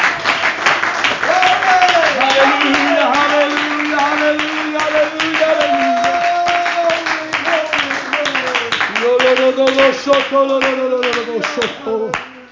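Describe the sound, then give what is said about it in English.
An audience claps their hands in a steady, continuous rhythm for the whole stretch, loud and dense, while voices sing long sustained notes over the clapping. “Let's clap our hands in this place.”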